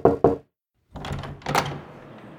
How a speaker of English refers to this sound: Knock, knock. Who's there?